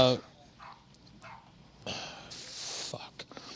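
dogs barking

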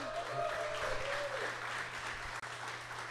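audience cheering and applauding

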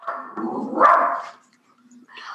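shetland sheepdog barking

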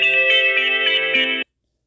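phone ringing

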